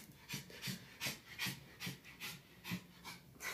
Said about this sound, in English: Sorry, the dog just walked into the room. He walked up to me, licked my foot, and then sat down. Thank you, Mr. Bing. Ew, and now he's licking his own feet.